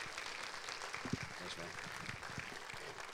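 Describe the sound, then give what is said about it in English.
An audience applauds steadily for about three seconds to welcome a guest speaker, a dense, even wash of clapping with some voices calling out in the crowd. “So if you could, just give him a warm round of applause”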